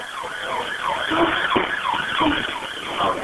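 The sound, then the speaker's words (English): An ambulance siren wails in quick rising-and-falling sweeps as the ambulance arrives, steady and fairly loud throughout, with a faint background hum and no talking. “In this CCTV, you can see the ambulance arriving”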